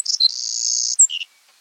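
A Savannah sparrow sings a thin, insect-like song: a few high chips, then a long buzzy trill, ending in a short lower buzz. It's clear, with no talking.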